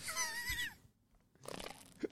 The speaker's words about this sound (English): Every time I take a sip out of this, it makes a fart noise, this coffee, and I'm hoping the mic isn't picking it up because every time it's like... And it's just making the experience of drinking the coffee very uncomfortable.